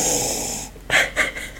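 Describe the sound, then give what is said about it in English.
Someone sniffs at a glass of pale white wine: a long breathy inhale followed by three short, sharp sniffs in quick succession, with no talking. “Sniff.”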